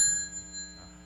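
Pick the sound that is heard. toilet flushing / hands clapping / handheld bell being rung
handheld bell being rung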